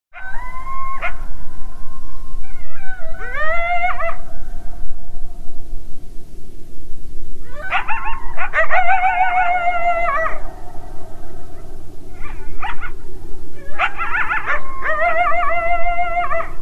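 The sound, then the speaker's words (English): Coyotes yip and howl in several overlapping bursts, high wavering cries rising and breaking, with short pauses between choruses, all over a steady low background hiss. “Oh, and if you have ever wondered what coyotes sound like, the yipping and howling at the very beginning of every episode, those are coyotes, they're not wolves.”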